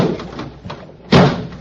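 A car door that will not catch slams once with a heavy thud that lingers briefly, preceded by a few soft knocks and rattles as it is pushed.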